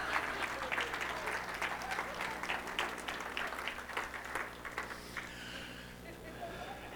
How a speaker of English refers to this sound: Okay. Give them both a nice round of applause.